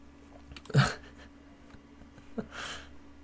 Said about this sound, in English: And not the coughing.